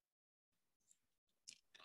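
A quiet, close-up sip of a fizzy soda: a few short wet slurps and mouth clicks, ending in brief hissy bursts, with near silence between and no talking.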